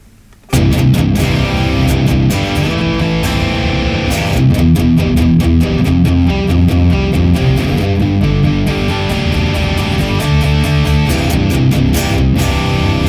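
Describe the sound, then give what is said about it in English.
A distorted electric guitar, run through a Boss IR200 pedal with the Thermi FA1 in stereo, plays a steady chugging riff with dense harmonic crunch, loud and sustained after a brief quiet start, with sharp rhythmic attacks throughout and no voices. “And then when we add in our Boss IR200 rocking the Thermi FA1 in stereo as well, it sounds like this.”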